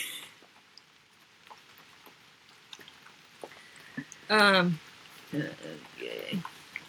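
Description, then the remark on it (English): Steady, soft rain patters in the background with scattered light drips and taps, continuing faintly as people begin talking over it near the end. “Our curls are not going to stay in with this rain happening right now.”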